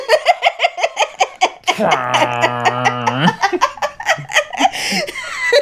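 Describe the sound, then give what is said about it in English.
A voice imitates a didgeridoo with a low, buzzing, steady drone lasting about a second and a half, set between bursts of rhythmic, choppy laughter before and after. “Your didgeridoo kind of sounds like the foghorn in the lighthouse.”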